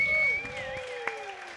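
Scattered audience clapping for a musical guest being introduced, thin and uneven, runs beneath a steady sustained tone, with a single sharper clap standing out near the end.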